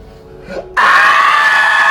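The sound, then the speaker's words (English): After a brief low vocal sound, a voice breaks into a loud, harsh, sustained scream imitating a monster whose jaw unhinges as it screams, held strained and raspy until the end. “And she starts screaming. Her jaw unhinges. It screams so loud.”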